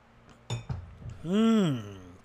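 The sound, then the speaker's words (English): A glass gives two quick, bright clinks in close succession, followed by a drawn-out voiced 'ahh' that rises and falls in pitch, like a satisfied breath after a sip of water. “Let me just have some water.”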